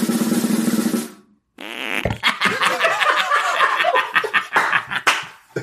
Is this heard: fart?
yes